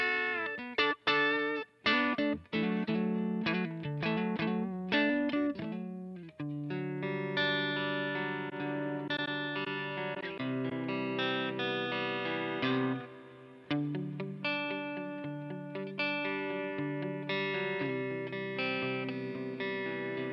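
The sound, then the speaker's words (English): A distorted electric guitar played alone through an amp modeler with reverb, recorded with a 4038 ribbon microphone set back a bit: choppy, stop-start chords for the first few seconds, then sustained, ringing chords and notes that swell and decay. “We'll get some reverb.”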